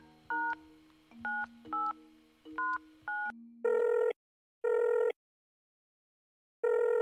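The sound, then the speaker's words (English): A quick series of keypad tone beeps as a phone number is dialed, followed by a repeating electronic ringing tone on the line, three rings with pauses between, clear. “one of my sources had sent me Carrie Jade's phone number. And, you know, I'd had no other luck that day, so I thought I'd give it a ring”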